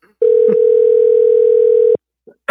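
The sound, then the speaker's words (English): A steady, loud telephone dial tone holds for nearly two seconds, a single continuous hum broken briefly by a faint click midway, then stops abruptly. “Don't make me make a phone call.”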